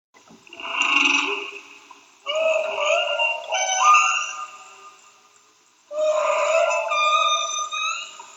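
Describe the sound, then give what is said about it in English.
Whale song: three long, tonal calls with rich harmonics and sliding, moaning pitch changes, each lasting a couple of seconds with short gaps between, heard alone and fairly loud. “Four new papers on the complexity of whale songs are suggesting that these calls are not only more complex”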